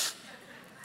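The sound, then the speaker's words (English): A quick, breathy hiss opens into a steady, airy intake of breath that holds at an even level for under a second, with no talking over it. “Nobody in the room right now is like, inhale.”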